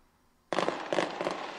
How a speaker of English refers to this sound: Fireworks, boom, bang, bing, bang, zing, zang.